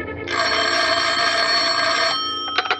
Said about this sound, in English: The phone rang, and I thought twice before I answered it.